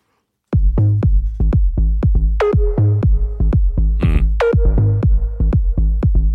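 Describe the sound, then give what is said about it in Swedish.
A techno track starts after a brief silence, with a steady pounding kick, sharp synth stabs and sweeping tones. What is sent to the reverb is automated rather than everything being sent, so some hits ring out with a reverb tail while others stay dry. “Och det är lite mer techno-hållet. Också så här, där man, att automatisera vad som skickas till reverb snarare än att låta allt skickas till reverb.”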